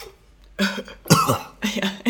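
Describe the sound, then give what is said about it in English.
A person imitates General Grievous's raspy, wheezy cough, three harsh hacking bursts in quick succession, fairly loud, with no talking. “My number three, General Grievous's cough.”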